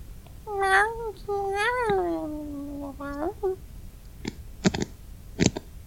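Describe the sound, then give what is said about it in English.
A person imitates a cat, letting out a few drawn-out, wavering meows, followed by a handful of sharp clicks or taps. “you don't like the cat? No, not this. Not the cat game.”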